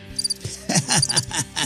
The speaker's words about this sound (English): Crickets. Oh, that never ceases to be entertaining, you know?